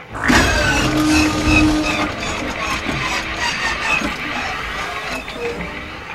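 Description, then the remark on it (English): A car engine, its tank filled with gas kept for a year, cranks steadily for several seconds, a loud, whirring starter grinding on without the engine catching and running, then fades slightly toward the end. “So you put gas that you've kept for a year into your car, and it didn't work. Your car still won't start.”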